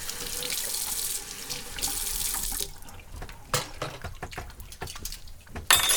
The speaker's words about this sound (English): There are some dishes stacked up, if you wouldn't mind washing them.